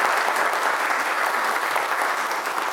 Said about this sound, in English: So one more round of applause for Lori.